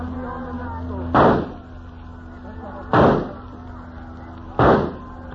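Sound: gunshot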